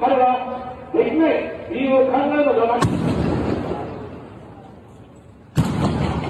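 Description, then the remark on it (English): At an election rally in the city of Nara, Japan, a man speaks through amplification, then two loud, booming gunshots, fired from behind at former Prime Minister Shinzo Abe, ring out about three seconds apart, the first trailing off in a long rumbling echo before the second cracks sharply. “Two gunshots, fired from behind.”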